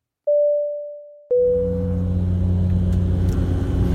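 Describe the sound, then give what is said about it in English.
Airplane cabin noise in flight on a plane from Southampton Airport to Manchester: a brief steady electronic tone gives way to a loud, constant low roar and droning hum that continues without change. No one speaks. “So, as you will probably be able to hear, we are airborne, and this is where the tortoise starts to catch the hare.”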